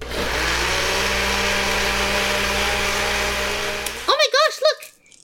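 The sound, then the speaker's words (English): A blender roars for about four seconds while blending Die Hard Dice, its motor whine steady over a harsh, rattling grind, then cuts off abruptly before a person briefly exclaims. “Like, it didn't break the blender or anything, they poofed into small dice!”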